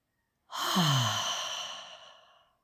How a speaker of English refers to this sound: Four of these deep breaths, expanding the diaphragm on the inhalation, exhaling through the mouth.